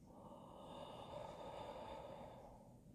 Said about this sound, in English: You breathe in for 4 seconds. Breathe out for 4 seconds.